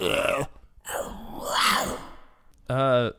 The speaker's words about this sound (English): I did hear that. That big-ass cat? The beast roar?